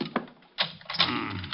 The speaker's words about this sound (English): Just locking the door again.